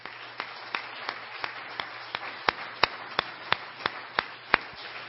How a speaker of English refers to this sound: Let's give Him one more hand clap.